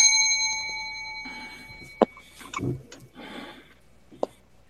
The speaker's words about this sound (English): All right, I'm going to ring the bell. You may go at it, and I'm not going to save any time because we're trying to get this done quickly.